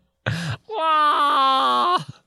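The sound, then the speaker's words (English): A person imitates a wounded cat's wail: a short breathy burst, then a long, loud, strained moaning cry with wavering harmonic pitch, trailing off after about a second and a half. “A wounded cat.”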